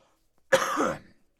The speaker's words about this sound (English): So, so you don't continue hearing me hack to death